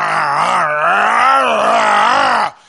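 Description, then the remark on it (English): A person imitates a big German shepherd's growl with one loud, sustained guttural voice lasting about two and a half seconds, its low pitch wavering up and down before cutting off abruptly. “And he starts growling, and he goes up to the door, puts both hands on the door frame like that, and takes the knob in his mouth.”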